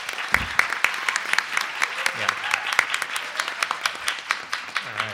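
A crowd breaks into steady applause, many hands clapping in a dense, crackling patter with sharp individual claps standing out, sustained at a fairly even level throughout.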